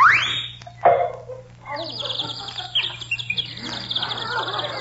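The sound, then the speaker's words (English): A small bird chirps and twitters in quick, high bursts over a steady low hum with some faint background voices. “Do you hear that little bird singing”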